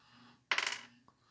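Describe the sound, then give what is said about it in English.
A six-sided die (D6), rolled to randomly pick D&D magical or blessed equipment from the video game Super Castlevania 4, clatters across a hard surface in a quick burst of bright, rapid taps that settle within half a second, followed by one last faint click. “And so now I need a D6.”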